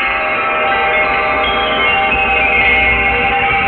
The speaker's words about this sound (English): The world is full of chimes.